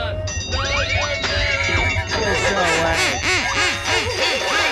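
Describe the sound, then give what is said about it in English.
Duck Rock music built from rapid, repeated duck quacks, arching pitch sweeps bouncing in a steady rhythm over a low, sustained bass hum, loud throughout. “I'm telling you, that Duck Rock is going to be what all the kids are swaying to. Quack, quack.”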